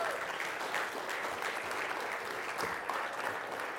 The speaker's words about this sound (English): Now you can clap. All right.